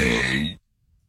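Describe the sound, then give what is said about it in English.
A single suppressed burp during a radio broadcast, a loud, throaty, voiced rumble lasting about half a second before cutting off abruptly into silence. “That's me suppressing my burps.”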